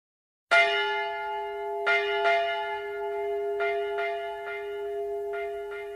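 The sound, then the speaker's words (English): Church bells toll with a strong opening strike, followed by repeated overlapping rings at irregular intervals, their rich harmonic hum sustaining throughout. No voices are present. “The album opens with the sound of tolling bells”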